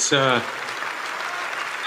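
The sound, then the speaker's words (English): A single voice lets out a brief shout, then a dense, steady wash of crowd noise follows, like thousands of people cheering and clapping together, sustained at an even level. “And the crowd goes wild, thousands of people.”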